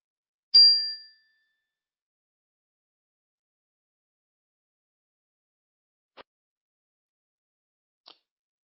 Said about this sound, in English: I'm going to invite you to get comfortable where you are, and I'll begin with a bell to call your attention.